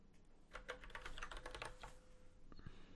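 Rapid keystrokes on a computer keyboard, a dense burst of clicky taps that slows and thins out toward the end, with no voices.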